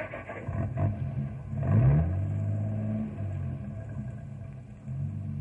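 A truck engine rumbles, revs sharply for a moment, then settles into a steady, low drone as the vehicle moves off.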